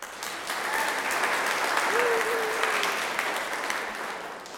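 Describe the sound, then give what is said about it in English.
A group of children claps for a girl who correctly recited 1 Corinthians chapter 3, verse 9, in a dense, steady burst of applause lasting several seconds, with faint voices mixed in beneath the clapping. “Clap for her.”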